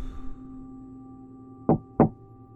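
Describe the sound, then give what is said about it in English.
A man knocks twice on a door: two firm knocks in quick succession, distinct, over a quiet hum with no voices. “Witt counted 12 doors on his right, and then found himself taking a deep breath before knocking twice.”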